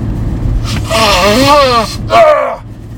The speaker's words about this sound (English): Hold on one second, I'm gonna blow my nose. I got all emotional thinking about my daughter earlier. I don't have any, I do have a napkin. You guys are gonna have to listen to me blow my nose, so.